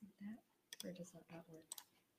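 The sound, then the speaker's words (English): A few sharp clicks on a computer keyboard tap out irregularly, mixed in with a person's low murmured voice that runs through most of the moment. “Just me fighting with the keyboard.”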